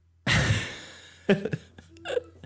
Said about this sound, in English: Getting tired here. Yeah, I hear you yawning. So tired.